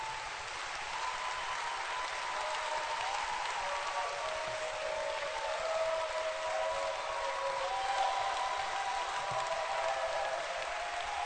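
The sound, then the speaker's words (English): An audience at a special Sunday morning service claps their hands in steady, dense applause for about eleven seconds, a broad hiss of many hands at an even level, with faint tonal murmurs of voices or organ underneath. “Hallelujah. Clap your hands.”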